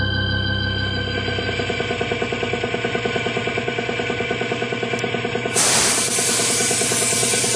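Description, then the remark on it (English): Spray paint is sprayed onto a boat, hissing out in a steady, airy stream over a fast, even pulsing beneath it, then surging into a louder, harsher burst of spray near the end. No one speaks. “Give it another shot of paint over here”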